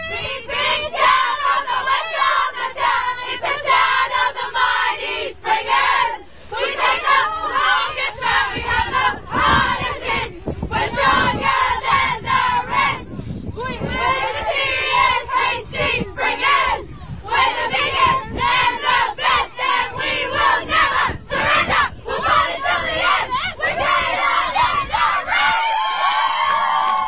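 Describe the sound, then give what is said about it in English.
The Caroline Springs Metro B Women's team, premiership winners, loudly chant and sing their club song together, their voices rough and shouted, with rhythmic bursts and brief pauses over about half a minute. “You will, but we did have someone who sent us a club song.”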